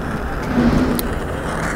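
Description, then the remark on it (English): A steady, rushing hiss of a torch lighter flame burns continuously while a Cornelius & Anthony cigar is lit on a slightly windy day, with a tiny sharp click partway through and no voices. “So as they say in the podcasting interview world, without further ado, let's get her torched.”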